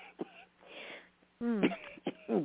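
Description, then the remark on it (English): A few short coughs and a throaty clearing sound, fairly loud, coming in brief bursts separated by breathy pauses with no speech. “Got a little cough here.”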